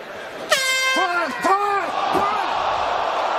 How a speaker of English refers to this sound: Let's watch the replay here. Time in slow motion is the kick to the body. Now here's the buzzer, and boom, that's after the buzzer.